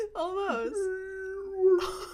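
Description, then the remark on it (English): A person voices a long, wavering moaning call imitating a whale, sliding in pitch then holding a steady tone for about two seconds, fairly loud, with a brief noisy burst at the end. “That's my whale sound.”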